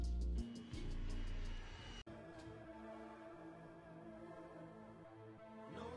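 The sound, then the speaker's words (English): A loud, steady roar of an airplane taking off, with a deep rumbling low end and whining engine tones that hold throughout, with no talking. “Put me on the plane.”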